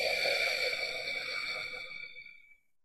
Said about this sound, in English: I'm trying to use the whole breathing system. And also a little in the throat, there's a little vibration in the throat. Not a lot, but a little. So when we inhale through the nose. We drop the tongue around the lips and exhale.